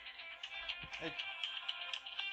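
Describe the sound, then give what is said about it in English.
A phone rings with a bright, electronic melodic tone that repeats steadily, sounding fairly quiet, with a brief murmur of voice partway through. “That's probably a phone call about the same thing.”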